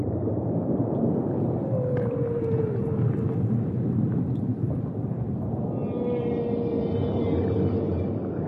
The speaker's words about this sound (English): The ocean itself, when you dive down, is not a quiet place. It is a beautifully loud place. You know, the fish talk to each other, interestingly, more in the morning than in the afternoon. The coral is making its own creaking sound.